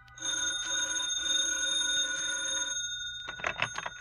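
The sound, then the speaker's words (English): An old-fashioned telephone bell rings for a hotel wake-up call placed at the desk, in a loud, rapid metallic trill for nearly three seconds, breaks off, and is followed by a few short clattering knocks. “I left a call at the desk, turned over, and closed my eyes.”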